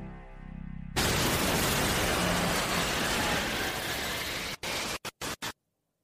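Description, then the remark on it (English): A low rumble gives way to a sudden, loud explosion from a plane crash in a movie that becomes a sustained, harsh roar of noise, then cuts out in a few abrupt stutters before ending. No one speaks. “There is the explosion in the plane crash.”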